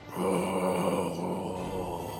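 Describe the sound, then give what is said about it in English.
A voice imitates the low, rumbling growl of an extremely large ghoul coming out of a hole, one continuous guttural rasp held steady for about two seconds at a fairly loud level, with no words. “And you just hear this like low growl come out.”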